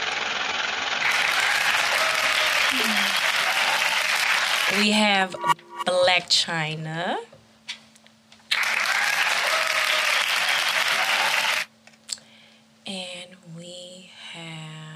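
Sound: audience applause and cheering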